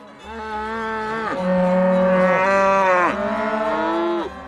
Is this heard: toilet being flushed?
no